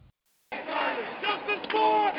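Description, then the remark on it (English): An angry street protest crowd in New York at night shouts and chants together, including "I can't breathe", protesting a grand jury decision about a police officer's killing of an unarmed black man; a loud, dense wall of many voices after a brief silence, with individual cries rising above the roar. “Angry crowds tonight in the streets of New York, protesting yet another controversial grand jury decision.”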